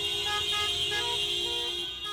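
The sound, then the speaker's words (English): Car horns blare steadily over a dense din in a traffic jam, several overlapping honks held almost without a break for the whole stretch, loud. “There were cars were honking.”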